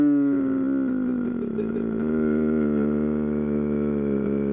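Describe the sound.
A voice imitates a fridge's strange groaning noise, a loud, sustained droning moan that dips slightly in pitch and holds steady for several seconds without a break.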